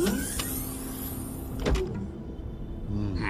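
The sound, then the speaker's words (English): A video game door sound effect as a button is pushed, the door making its opening sound but not opening: a steady mechanical whir punctuated by two sharp clunks, then a rising hum at the end, fairly loud with no one talking. “Look, you go to push a button, and the door makes an opening sound, but it doesn't open.”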